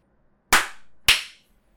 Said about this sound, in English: All right. Do a clap.